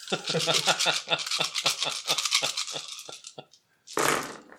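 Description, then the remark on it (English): Dice, including stress dice, rattle in quick, sharp clicks for about three seconds, slow to a few scattered knocks, then clatter out in one loud burst as they are rolled. “You're missing a stress dice there.”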